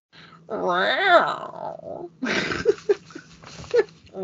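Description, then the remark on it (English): A person does a throaty, growling imitation of a panther's roar for the Panthers team, rising and falling for about a second. Animated chatter and laughter follow right after. “Real quick, give us a Panther roar.”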